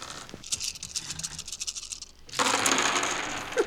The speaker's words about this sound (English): Roll the dice.